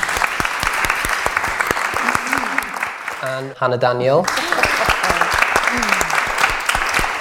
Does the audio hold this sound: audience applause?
yes